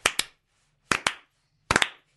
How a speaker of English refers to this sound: Can I just be the first to start the slow clap?